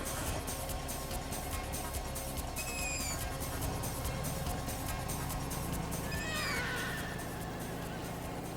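A horse whinnies twice as it is brought into a stable, a short call and then a longer, quavering one a few seconds later, over a steady, noisy background rumble.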